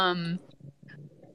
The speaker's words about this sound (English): I mean, of course my dogs are gonna bark while I'm talking.